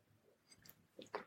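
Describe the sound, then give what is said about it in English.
A quiet sip of water: a few brief, wet mouth clicks and a soft swallow, with no one talking. “Sorry, I had to take a sip of water.”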